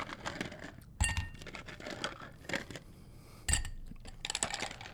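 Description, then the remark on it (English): Ice cubes clink and rattle into a couple of rocks glasses, with a couple of sharp impacts followed by lighter scattered taps and jingles, no one speaking. “We have a couple of rocks glasses here, so yeah. I'll give you some ice.”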